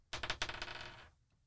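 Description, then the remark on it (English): A twenty-sided die, rolled for an acrobatics check, clatters across a tabletop and lands on a natural 20: a few sharp bright bounces followed by a quick rattling roll that fades out after about a second, with no voices. “Okay, we'll make an acrobatics check to see if okay. maybe you land it.”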